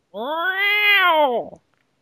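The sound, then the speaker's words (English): A cat lets out one long, loud, angry meow, its pitch rising into a strained wail before dropping off abruptly, followed by silence. “That cat's fucking mad, dude.”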